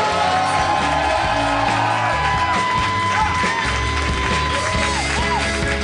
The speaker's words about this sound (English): Harmontown is now in session. Please keep those applause going for your dungeon master